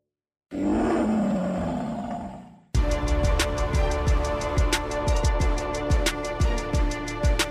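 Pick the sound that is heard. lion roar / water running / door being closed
lion roar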